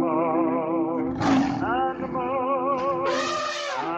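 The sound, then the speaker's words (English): A cat yowls loudly and continuously, a drawn-out, wavering cry that rises into a couple of sharper, harsher bursts, with no one speaking. “Sorry, I was upstaged by a cat.”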